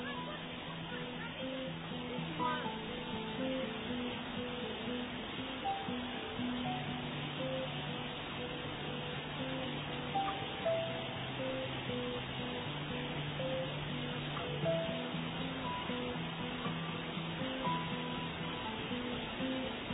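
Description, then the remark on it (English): A dense, steady roar of a lot of water rushing over the spillway of a large dam, loud and unbroken for the whole stretch, with faint tonal sounds buried beneath the torrent. “This is a spillway of a dam. It's a large dam. There's a lot of water coming.”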